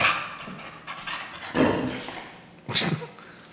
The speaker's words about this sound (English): It's my dog, Rosie. She's making a guest appearance.